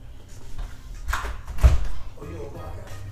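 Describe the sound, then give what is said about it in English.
A couple of dull thuds against a door, moderately loud, with muffled voices in the background around them. “Who is this knocking at my door?”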